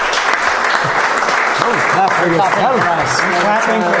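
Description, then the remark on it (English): A crowd applauds steadily and loudly throughout, the dense clapping filling the whole stretch while several voices talk and call out over it. “I'm clapping for the rest of you.”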